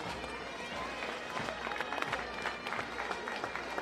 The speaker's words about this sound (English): We come here, ladies and gentlemen, big round of applause for the Cavan Indian Association.